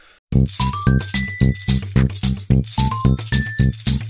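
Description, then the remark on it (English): A bright bell chime rings out in quick stepped notes over a steady, rapid pulsing beat, loud and close, with no voices. “And then we hear that cool bell sound.”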